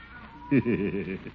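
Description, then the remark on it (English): A cat sitting on a fence meows once in a long, drawn-out, quavering cry that wobbles up and down in pitch, fairly loud, with nothing else going on around it. “Seems I can still hear that darn cat.”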